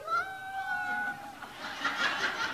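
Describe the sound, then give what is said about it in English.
Children's voices imitate a donkey's hee-haw: first a drawn-out, wavering high-pitched call, then a burst of overlapping, breathy shouts and squeals from the group, with some giggling mixed in. “Can you make a really loud donkey song?”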